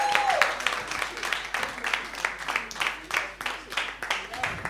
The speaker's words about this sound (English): Give the Lord a big clap.